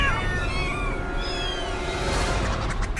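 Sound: cat meowing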